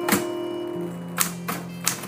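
Four sharp typewriter key strikes land at an unhurried, uneven pace, each a crisp clack against paper, while a low steady hum runs underneath. No one speaks.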